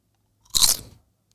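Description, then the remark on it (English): A single loud crunch as teeth bite down into a crisp, medium-thickness piece of food with dust on it, a brief burst of crackling that fades within half a second, with no talking. “Just throw it in your mouth and just bite down.”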